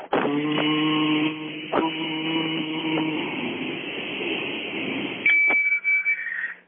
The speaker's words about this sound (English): It's a highly embarrassing thing I need to blow into my car to start it because of a DUI.